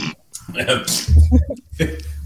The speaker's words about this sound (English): Oh, God. That's fart. I'm glad that blew over.